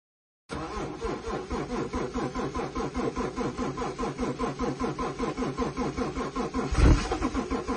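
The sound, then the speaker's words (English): A car engine cranks over and over in a steady, rapid chugging rhythm, loud, straining to start with a brief sputter near the end as a man tries to start his car. No one speaks. “Me waiting for the man who I dated for love and not money to start his car.”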